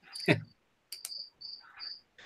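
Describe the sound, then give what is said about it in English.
Crickets chirp in short, high-pitched bursts that repeat at a steady pace, joined by a couple of brief, sharper rustling clicks. No one speaks. “And I like the crickets in the background because it's perfect for that.”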